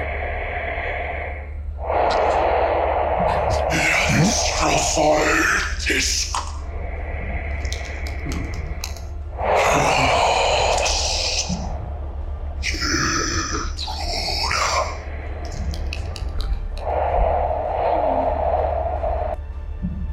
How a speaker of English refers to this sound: And you hear the sound of a very large creature. Oh, and it seems to be walking away from you towards the voices. And you just hear it breathing.